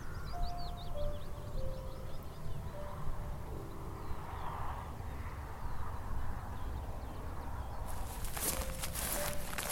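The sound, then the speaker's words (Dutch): Footsteps crunch along outdoors at 7 a.m. on a Monday morning in Doolin, a village on the west coast of Ireland, over a steady low rumble, with birds chirping faintly and a few soft chiming tones, ending in a burst of sharper, louder clatter. “Zo, ik ben even naar buiten gelopen. Maandagochtend, 7 uur, lekker vroeg.”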